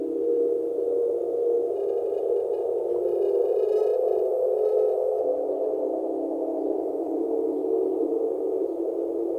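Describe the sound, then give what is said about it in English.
A sustained electronic tone from a tape-based synthesizer drones steadily in the low-mid range, washed in reverb, with a slight shift in pitch partway through and faint wavering harmonics above, no voices present. “So I said this last week, any of these type of tape things you do, like so many things with music, sound much better going through some reverb or other effects.”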